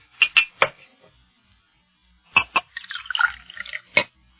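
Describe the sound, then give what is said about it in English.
Water splashes from a tap into a glass in short, intermittent bursts, with a brief gurgling fill in the middle, moderately loud, with no one speaking. “Hey, look, may I have a glass of water if I've got to go into such a lengthy discussion? I'll get you one.”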